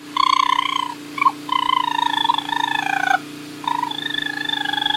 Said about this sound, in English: Like urban foxes, urban raccoons can get too used to humans. They're rarely dangerous to people or pets, but they can cause a real mess if they get into your house and will bite if they feel threatened. This is what a raccoon sounds like.